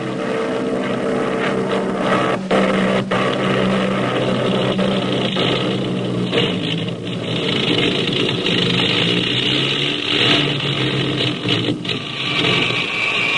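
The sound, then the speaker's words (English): A steady, rumbling aircraft engine of a plane flying over the Pacific with its gas gauge at zero drones on without a break, loud and dense with a low throbbing hum and a rough, buzzing edge, with no voices over it. “When the gas gauge of our plane hit zero, we quickly made all possible preparations for a forced landing in the Pacific.”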